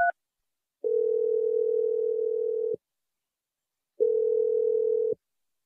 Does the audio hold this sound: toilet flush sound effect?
no